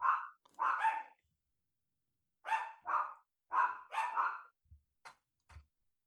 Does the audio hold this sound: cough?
no